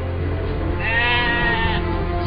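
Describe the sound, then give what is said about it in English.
A single sheep lets out a wavering, nasal bleat lasting about a second, clear over a steady low background hum, with no one speaking. “Sheep! Here, sheep!”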